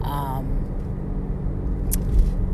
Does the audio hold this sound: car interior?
yes